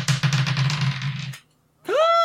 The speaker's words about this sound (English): So, okay, I'm going to try to... Come on, sweet dice. Roll.